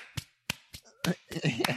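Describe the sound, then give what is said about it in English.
Hands slap together in several sharp, crisp smacks at an uneven pace, with faint voices and shuffling mixed in toward the end. “Just slap your hands like that was like the best thing that's ever came out of your mouth there.”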